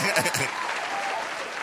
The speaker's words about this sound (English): You get extra applause?